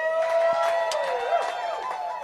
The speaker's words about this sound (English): So, ladies and gentlemen, let's put our hands together and let's give a big round of applause